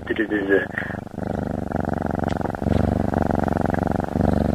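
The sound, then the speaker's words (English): A cat purrs, a steady, loud, rumbling purr with a fast rhythmic flutter that continues unbroken for several seconds, with a brief vocal sound at the very start. “It's just a cat purring, Peter, don't be afraid.”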